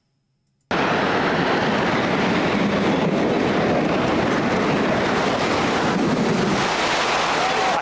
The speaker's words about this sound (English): And sounds very much like water to me.